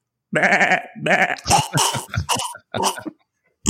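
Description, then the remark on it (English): A voice imitates a goat choking and dying: a wavering, quavering bleat followed by harsh choking, coughing gasps and sputters, loud, ending abruptly. “So that was a goat that was choking and died.”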